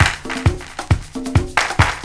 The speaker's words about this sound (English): I love how they have that like delay on those claps.